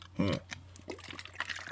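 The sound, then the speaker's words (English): A quick sip of water, a short wet slurp near the start followed by faint swallowing clicks and small mouth noises, with no talking. “There we go. A little water helps.”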